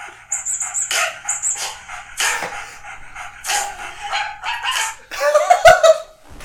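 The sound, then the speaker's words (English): A dog, Hobbs's dog, barks repeatedly in quick, uneven bursts, loud, ending with a few high-pitched yelps and whines over a faint low hum. “And then beats by Hobbs, his dog.”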